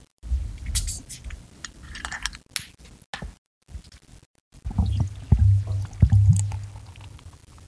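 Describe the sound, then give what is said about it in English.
Beer being poured from a growler, with irregular glugging and fizzy splashing that stops briefly midway, then resumes with deeper gurgles as the glass fills. No one speaks. “Shitty pour, though.”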